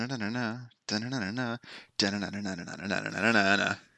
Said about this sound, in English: That noise is some sort of Irish jig that my sister uses to go to sleep. And I do not understand how she can sleep with such a very peppy and upbeat noise.